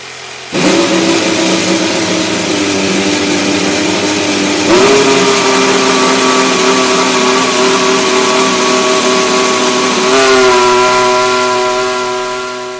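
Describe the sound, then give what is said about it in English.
A team's new racing car for the coming motorsport season is fired up: the engine roars loud without a break, its pitch climbing in two distinct steps as it revs higher, then easing slightly at the end. No voices. “Teams are already announcing launch dates and firing up their new offerings.”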